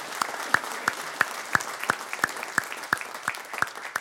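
A church audience claps for a newly baptized member, a dense wash of applause with sharper claps standing out in a steady, even rhythm. It holds at a moderate level throughout, with no voices.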